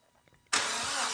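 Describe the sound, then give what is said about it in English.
A Mitsubishi car's starter cranks the engine on the very first start attempt, kicking in abruptly after a brief near-silent pause and continuing as a loud, steady, harsh whirring grind through the end, with no voices. “Because that sounds like standard Mitsubishi starter. Yeah, so it's just cranking for us.”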